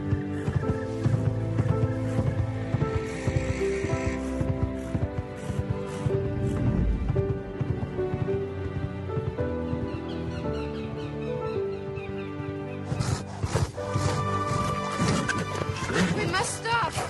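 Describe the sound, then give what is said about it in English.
A horse that is about to die whinnies and neighs repeatedly over the clatter of hooves, loud, with dense, strained cries filling the whole stretch and a sharp burst near the end. “Yeah, the horse is about to die.”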